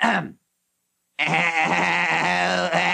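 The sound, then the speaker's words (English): A person imitates a goat's bleat in a barnyard-animal guessing game: a short wavering cry, a brief silence, then a longer, strained, quavering bleat held for nearly two seconds, loud. “No, it's a goat. You know, one of them lady goats.”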